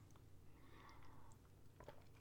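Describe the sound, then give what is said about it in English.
A quiet sip of beer: soft slurping and faint mouth sounds over a low steady hum, with no talking, ending in a brief sharp click. “First sip of that beer, and that's fantastic.”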